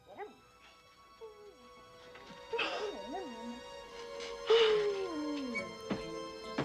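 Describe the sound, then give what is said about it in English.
A dog whimpers and whines in distress, its high cries wavering up and down, broken by a few short yelps over a steady humming background. “Billy wakes up hearing his dog in distress.”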